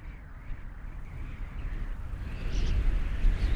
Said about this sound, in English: And with that invitation, feel yourself settling more into your body, letting your ears open up and taking in the sound of the wind.